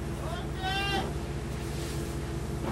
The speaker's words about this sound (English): That's a shout from the stern to say everything is okay, I can go ahead on the boat now.